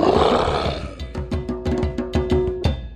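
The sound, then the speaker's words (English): A big cat roars loudly: one long, rough, sustained roar, then a quick series of rhythmic, throaty grunting pulses that trail off. “Did you say roar? That's right.”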